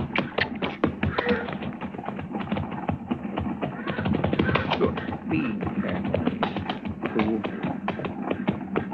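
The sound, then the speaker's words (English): Horses' hooves clip-clop steadily on hard ground as riders ride down toward another rider, a busy, continuous patter of overlapping beats that keeps an even riding rhythm throughout. “Well, let's ride down and say hello anyway.”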